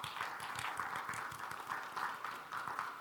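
Steady applause welcoming a new member at Burlington Baptist church, with many overlapping hand claps forming a dense, even patter that holds at a constant moderate level for about three seconds, with no voices over it.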